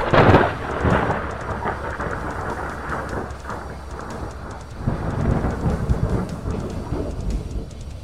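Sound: thunder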